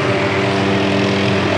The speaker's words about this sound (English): There comes a helicopter. Yeah. 1 second, we got a helicopter.